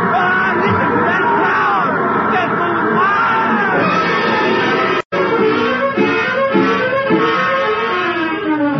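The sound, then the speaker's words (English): A large boxing arena crowd roars and yells in a continuous uproar during a fight, loud and dense throughout, with overlapping shouts and whoops and a brief cut in the middle. “Oh, this arena is turning to an insane asylum.”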